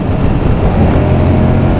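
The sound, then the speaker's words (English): A motorcycle engine rumbles steadily, a loud, continuous low growl with a rough, throbbing texture and no talking over it. “I've got a characterful rumble coming from the engine down below.”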